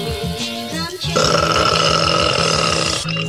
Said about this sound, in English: that first burp we didn't get.